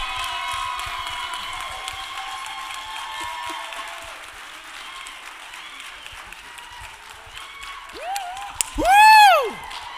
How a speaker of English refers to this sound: If you would, clap your hands and show your love